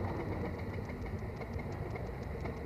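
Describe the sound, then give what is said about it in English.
A veteran car's engine, cooled by a coiled pipe radiator and restarted after the car had stopped, runs steadily: a dense low rumble with a fast, uneven chugging pulse and faint ticking on top, holding a constant level with no voices. “We had stopped there and he got it going again”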